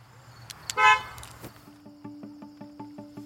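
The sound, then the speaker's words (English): A single short, bright car horn toot as the car is locked, bracketed by a couple of sharp clicks, then a steady rhythmic pulsing tone pattern takes over. “Did you lock the car? Oh, yeah, hang on.”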